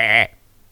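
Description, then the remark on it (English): A person gives a single short, nasal bleat imitating a goat, loud, lasting about a quarter second before dropping into near silence. “The problem is his boss is a goat.”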